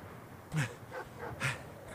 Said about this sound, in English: looks out in the distance as Rebecca and Kyle sprint down the dirt road, then at the barking dogs.